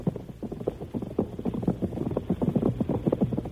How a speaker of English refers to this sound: Marbury urged her horse to a dangerous speed across plains broken by gopher holes. Behind her thundered the horses of Bart Benson and Butch.